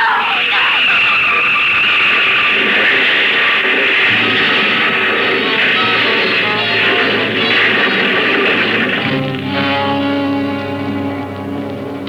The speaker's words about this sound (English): It rolled over and over and over and over. The bus and the glass all smashed. Everybody was all mangled and...